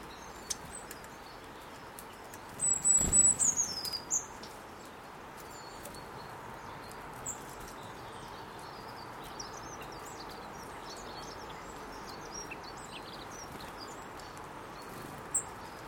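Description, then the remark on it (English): Scattered bird chirps and a short whistled call drift over a steady outdoor hiss around a tree during a bird watch, with a brief rustling knock early on. “So any exotic birds who have not yet landed on the tree, please come now.”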